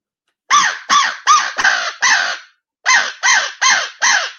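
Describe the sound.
Aggressive crow calling blown on a mouth call using a gargle and uvula roll: a rapid burst of five loud, raspy, gargling caws, a brief pause, then four more, with no talking.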